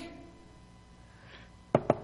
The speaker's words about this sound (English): And then finally Rhoda heard the knock and she went to the door and she heard Peter's voice, because I'm sure Peter wasn't just knocking.